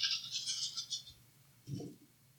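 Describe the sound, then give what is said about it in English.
Many dice rolled in a game clatter and rattle in a quick burst of bright, rapid clicks for about a second, then a single dull thump lands after a short pause; the roll falls one short of a critical success. No one speaks. “All those dice.”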